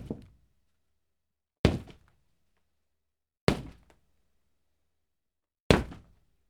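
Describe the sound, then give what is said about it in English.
Four heavy, booming footfalls land slowly and unevenly, each a deep thud with a short decay and silence between, like someone trudging up wooden stairs, coming up the stairs behind Mindy as kids play a game. “The kids sit set to continue their game when they get interrupted by heavy footsteps coming up the stairs behind Mindy.”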